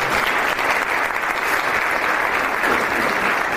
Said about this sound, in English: So that's also worth a clap.